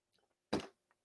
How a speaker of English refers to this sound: I'm going to sip my tea before we get into this work.